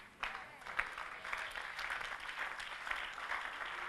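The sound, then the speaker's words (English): An audience claps steadily for a few seconds, a dense, crackling patter of many hands with no clear beat, holding at an even, fairly loud level throughout. “When clapping is coming, that means you have to close.”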